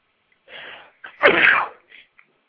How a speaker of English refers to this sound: Thank you for bearing with my sneezing fit here.